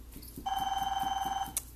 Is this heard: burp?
no